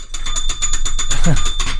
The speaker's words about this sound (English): Let me go grab the spoiler bell.